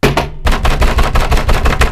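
A loud clatter of shot glasses of Captain Morgan clinking in a cheers and then banging on a table, starting with one hit, a short pause, then a rapid, steady run of hard knocks with no talking.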